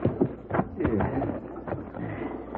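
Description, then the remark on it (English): The hooves of a ridden horse clip-clop in an uneven, plodding rhythm, moderately loud, while murmured voices carry on underneath. “Sure gonna feel good off this horse.”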